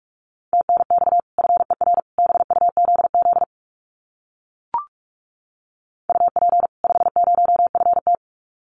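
Fast Morse code at about 45 words per minute sending common QSO phrases, a single steady mid-pitched tone keyed in rapid dots and dashes, sent in two bursts separated by a pause with one brief click.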